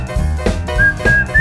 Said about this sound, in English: And he would lend his whistling techniques for the opening intro.